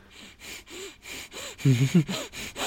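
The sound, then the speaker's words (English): A person imitates a creature sniffing: a rapid series of short, breathy inhales and snorts in a steady rhythm, growing louder and more excited, with voiced squeaks mixed in toward the middle. “Like, it's sniffing more, and it's laughing more as it sniffs more.”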